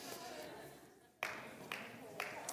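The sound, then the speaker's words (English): A handful of sharp hand claps land about half a second apart in a steady rhythm, fairly faint over a low murmur of background noise. “It's a hand clapping night.”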